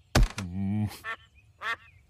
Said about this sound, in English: Beat it, ducks! I'm not old enough to have food for you.